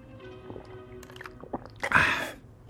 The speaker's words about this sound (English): Hold on a second. I'm going to take a sip of my beverage. It's non-alcoholic tonight.